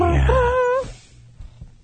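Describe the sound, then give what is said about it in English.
A single loud, drawn-out vocal cry in a mock pirate growl, strained and rising in pitch for under a second, then cutting off into near silence. “That was my pirate noise. That was an awful noise.”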